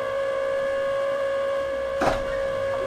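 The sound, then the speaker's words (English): A steady, buzzsaw-like whirr from the mechanism of a door opening and closing on a street, heard on the radio, a droning motor whine with layered harmonic tones that runs throughout, broken by a brief louder rasp near the end. “And the weird, like, buzzsaw now that's happening on the radio.”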